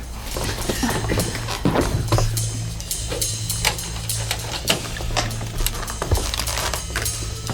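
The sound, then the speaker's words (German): A car engine rumbles low and steady while tires crunch over gravel with scattered crackling, grinding sounds as the vehicle rolls up and stops outside a barrack. No one speaks. “Bereits nach kurzer Zeit hörten Tim und seine Freunde, wie ein Wagen nahte und vor der Baracke hielt.”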